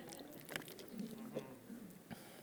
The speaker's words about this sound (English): And I'm going to take a drink of water.